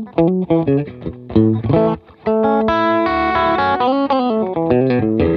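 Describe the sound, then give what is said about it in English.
A loud distorted electric guitar played through humbucker pickups plays a short riff of chugging chords and ringing sustained notes, with a brief pause before a long held chord, and no one speaking. “Two humbuckers, and they're super fat, deep tone.”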